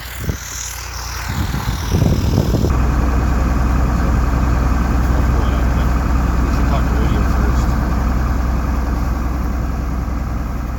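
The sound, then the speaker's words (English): A car engine idles with a steady low rumble while the car is being parked in a spot, holding constant for about ten seconds after a brief shift in tone near the start. “And then I'll park the car in the spot, and then we'll be off to Ottawa.”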